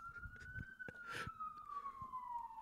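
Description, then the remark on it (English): A police siren wails loudly and steadily, its pitch sweeping slowly downward over a low rumble of traffic noise, with no voices. “And then the sirens would have came.”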